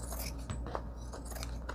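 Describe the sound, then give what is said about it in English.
Scissors cut through paper with a few faint, crisp snipping crunches at uneven intervals, heard on their own with no talking. “Let me get my other scissors. Let me get my don't fail me nows. All right, this will go through.”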